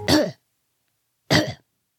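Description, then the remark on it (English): A cat coughs up a hairball into a porcelain cup held beneath its mouth: two short, harsh retching bursts, fairly loud, separated by about a second of silence, with no talking. “She coughed her hairball into it.”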